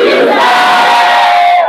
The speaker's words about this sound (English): As we meet on Sunday, let all documents that are expected to go through, scholarship documents, visas, promotion letters, for funds, whatever, as you shout Jesus, they are released.